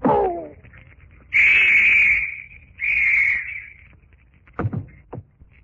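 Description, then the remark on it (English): A police whistle blows two long, shrill blasts at a port wharf, each lasting over a second with a short gap between, followed by a couple of dull knocks. “The whistle will summon others.”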